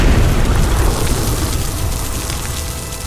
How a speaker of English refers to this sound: When suddenly, the orb he's generating pops upward above you and explodes outwards above your head.